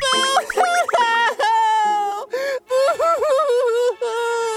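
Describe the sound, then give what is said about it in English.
Loud, broken sobbing with wavering, high-pitched wails and short breathy gasps between the cries, in uneven bursts over several seconds, echoing along Pumpkin Street in the town of Forestville at dawn. “Shortly thereafter, the sound of gasping and broken sobs began to echo along Pumpkin Street.”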